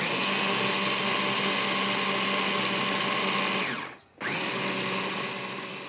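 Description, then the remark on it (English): A blender, with a lid through which ingredients can be poured while it blitzes, runs steadily at high speed with a loud, whining motor hum, cuts out briefly near the end, then spins back up and keeps going. No one speaks. “Anyway, let's blitz and add.”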